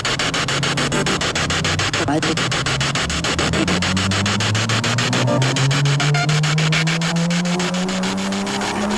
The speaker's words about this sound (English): That was a lot of car going by. We are outside.